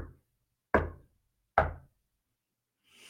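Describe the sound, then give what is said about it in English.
Two firm, resonant knocks on a door, spaced nearly a second apart, each ringing briefly before fading into silence. No one speaks. “And then lo and behold, right about 8 o'clock, as you're really getting worried, you hear a knock at the door.”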